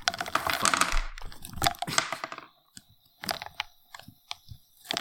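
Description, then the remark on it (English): Peanuts are poured into a fizzing bottle of Coke in front of a microphone: a dense crackling fizz for the first couple of seconds, then a scattering of sharp, separate plops and clicks. “You hear that fizzing and that plopping? That is peanuts going into all the over, Coke.”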